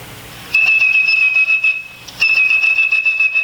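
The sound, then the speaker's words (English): A blind phone phreak, recorded in 1968, whistles a steady, high, piercing tone, holds it for over a second, breaks briefly, then sounds it again at the same pitch, mimicking a telephone signaling tone to place a free call through the phone network. No one speaks. “If you had perfect pitch like blind phone freak …, you could whistle calls through the network.”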